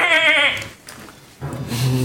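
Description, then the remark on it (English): A person imitates a goat's bleat: a loud, quavering nasal 'meh', then a short pause before a lower, throaty voiced follow-up sound. “I'm embracing the animals because I can't do accents, but at least it's I can more do like a goat.”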